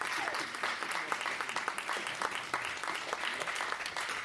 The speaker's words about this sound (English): So give it up for the lovely panel at Collins. I'll introduce them when they come up here. Big round of applause.